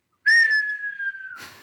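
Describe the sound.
A person whistles a single long, steadily falling tone that mimics a bomb dropping, loud, ending in a short breathy burst of noise.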